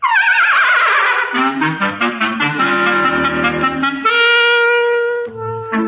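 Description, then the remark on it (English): A very old horse named Benjamin whinnies loudly, a quavering cry that slides downward for about a second, then gives way to a full, rhythmic passage of music. “That is a very ancient horse.”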